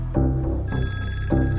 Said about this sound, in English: As soon as police got off the phone with Jennifer, the phone rang again.